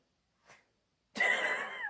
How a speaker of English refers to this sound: Yeah, you were snoring pretty hard, dude. Eyes rolling back and shit. Sleep. He was in a deep sleep.